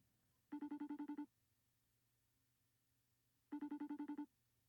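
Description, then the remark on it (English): An outgoing FaceTime call ringing tone on a phone plays twice, each burst a quick series of bright, pulsing electronic chimes lasting under a second, separated by a pause of near silence with a faint background hum. “Oh, do I FaceTime him? Yeah. I don't care. There we go. You hear it?”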